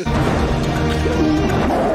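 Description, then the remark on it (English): A loud, sustained tiger roar from a movie scene fills the moment, rough and growling with dense low rumble, continuous with no voices over it. “He looks like he feels betrayed by the tiger.”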